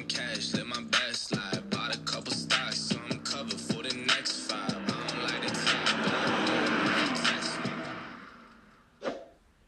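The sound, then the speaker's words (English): A car engine revs hard, its roar swelling and building over several seconds before cutting off, followed by a short final blip. The sound is loud, with no talking. “I just love to hear the engine. Listen, I love cars. I love to hear the horsepower.”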